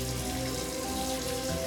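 Shower water runs at home in the evening in a steady, continuous hiss for the whole moment, even in level, with a faint low sustained tone droning underneath.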